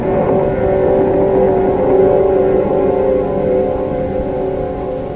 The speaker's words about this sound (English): And then, there was the most terrible, grinding roar as if some monstrous animal had ripped the entire bottom out of the boat.